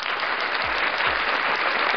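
Steady, dense applause from many hands fills the whole stretch, a loud continuous patter with no voices over it, and a couple of low thuds underneath.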